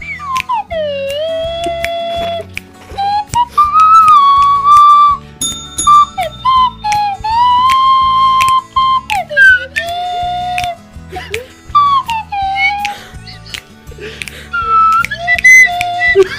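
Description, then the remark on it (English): A slide whistle plays a song's melody karaoke-style, with swooping glides between sustained notes, loud, over a steady backing track of music with a thumping beat. “Karaoke, but with a slide whistle.”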